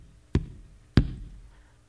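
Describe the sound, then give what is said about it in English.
Two heavy, booming knocks on the big wooden doors of a church, spaced slowly apart, each leaving a low resonant echo that lingers. A funeral procession leader knocks at the church doors as a hearse brings a casket to the door. “As this hearse is step by step bringing this casket closer to the door of this church, the funeral procession leader steps up to the big doors of this church and knocks 3 times.”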